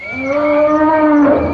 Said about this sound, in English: The old elephant lost his composure and charged Mbott, making a terrible trumpeting noise. They all held their breath.